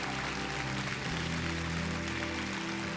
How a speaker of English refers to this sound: Would you just applaud the Lord this morning? Thank you, God.